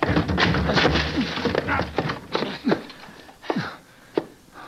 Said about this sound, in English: Blasted door. Come on, we'll break it down. But the woman. Forget the woman. Come on, put your shoulder to it.